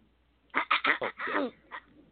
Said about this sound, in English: Oh, someone's clearing her throat.